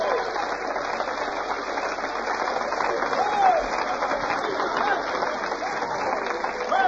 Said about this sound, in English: Give the Lord a good hand clap if you want to be a part of God's church and God's revival.